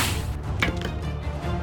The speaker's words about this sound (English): They all heard it, the telltale tang and whip of a crossbow being fired.